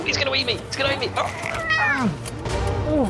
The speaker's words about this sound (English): Why are there so many cats in here?